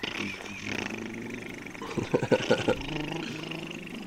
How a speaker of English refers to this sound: Man, this car got loud. Yeah, you got a hole in the muffler.